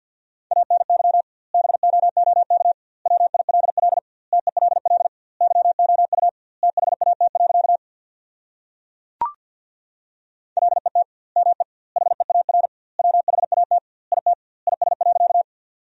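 Fast Morse code at 50 words per minute with double word spacing, sending sentences built from the 300 most common words, in a steady mid-pitched tone; rapid dots and dashes grouped into words with short gaps, broken by a longer pause with a single sharp click before the keying resumes.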